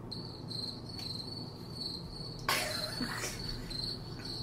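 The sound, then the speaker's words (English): Steady, high-pitched cricket chirping fills the background, continuous, with a brief rustling burst partway through and no voices. “Long live the crickets.”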